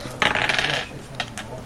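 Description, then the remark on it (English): Dice clatter and rattle across a hard tabletop in a quick burst, rolled for a move in a game, then settle with two small, sharp clicks. Fairly loud, with no one talking. “Right, dice. Dice and moves.”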